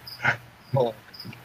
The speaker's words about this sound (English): Shut up, crickets! They don't listen. They don't. They just don't stop. Can't stop. Won't stop. Shut up, crickets! Is it rolling? Oh, I can't wait to edit that. Can you edit out the crickets?